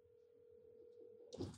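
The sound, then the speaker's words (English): A steady, low-pitched telephone dial tone hums continuously at low volume as a phone call is placed, then a brief burst of louder rustling noise cuts in right at the end. “Okay, I'm about to call you right now”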